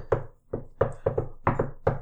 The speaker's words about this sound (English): I give it another knock.